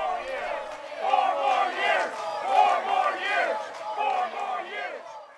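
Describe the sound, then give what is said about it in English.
A large crowd at the Republican National Convention in North Carolina cheers loudly for Donald Trump, a dense roar of many voices swelling and dipping in waves for several seconds without a break. “Unlike Joe Biden, who accepted his presidential run nomination for the Democrats with a speech by himself, the White House incumbent demanded and got a crowd.”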